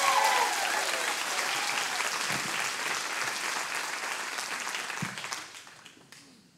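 A crowd applauds steadily, a dense wash of clapping that holds strong for about five seconds, with a few scattered cheers, then tapers off quickly toward the end.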